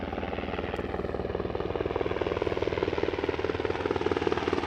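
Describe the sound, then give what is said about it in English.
Several helicopters drone steadily overhead, their rotor blades producing a rapid, rhythmic thumping that stays loud and constant throughout, with no voices present. “Lots of helicopters.”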